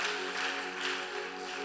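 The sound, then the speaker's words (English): An audience clapping hands for Jesus during a church service, a dense, steady wash of claps at even loudness, with a sustained musical tone humming underneath throughout. “Oh, clap your hands for Jesus.”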